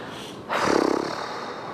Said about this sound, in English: Just breathing. And then when you feel ready, exhaling it out.